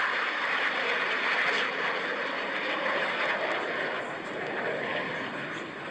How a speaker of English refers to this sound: Sounds like a tornado or just wind. A It's a jet.